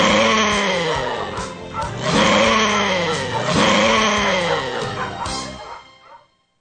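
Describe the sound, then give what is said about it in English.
Several dogs, Michael Vick's dogs, bark loudly in a continuous, overlapping clamor, with calls rising and falling in waves for about six seconds before cutting off. No one speaks. “because when they win Michael Vick's dogs, they'll just let them out and let them go.”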